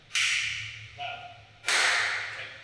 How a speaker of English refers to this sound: Do it one more time. Just one clap. One more time. Clap.